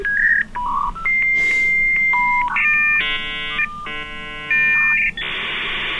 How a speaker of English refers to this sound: the anachronistic tones of a dial-up modem are not a reminder of the past. It's how she connects with the digital world today.